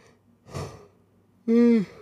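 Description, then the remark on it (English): A single yawn: a breathy intake of air, then a loud, drawn-out voiced groan on the exhale that stops abruptly. No talking. “Sorry for the yawns, people.”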